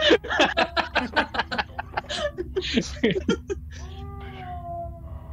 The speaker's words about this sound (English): Oh, good kitty.